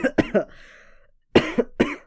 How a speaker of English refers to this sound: I just coughed. Now I'm not gonna cut it out.